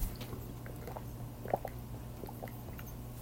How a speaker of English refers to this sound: Hang on, we're going to drink some water.